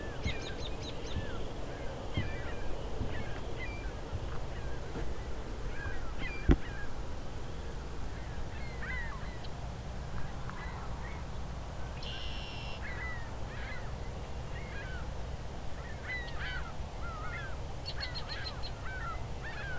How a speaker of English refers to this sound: Ring-billed gulls.